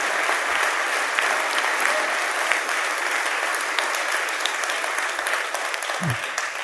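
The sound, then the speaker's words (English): Sustained applause from a large crowd clapping in praise to God, a dense, steady roar of many hands clapping at once, loud and continuous for several seconds with no talking. “Why don't you give God a hand clap of praise for sparing you and not giving you what you deserve?”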